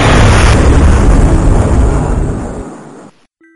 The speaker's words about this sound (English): Do you think they bought that story? That a transformer explosion took off the top three floors of the hotel?